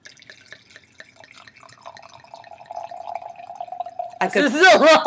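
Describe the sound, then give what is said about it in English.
Wine trickles steadily into a glass, a soft gurgling stream with a ringing tone that holds for several seconds before a man's voice cuts in near the end. “I could pour quicker, but I decided not to.”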